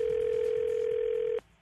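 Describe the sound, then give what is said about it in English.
A steady, loud single-pitch telephone tone hums for over a second, then cuts off abruptly, leaving faint line noise behind, as a call to a house connects. “And then Mike, played by Scary, calls the house. Let's listen into today's phone tap.”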